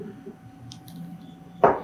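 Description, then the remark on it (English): Knife chopping an onion: a couple of faint crisp ticks, then one louder, sharper crunching chop against the board near the end, with no voices. “So I'm just chopping it here. Lettuce. I can't tell. It's onion.”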